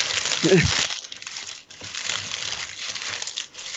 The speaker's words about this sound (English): Someone taking the trash out.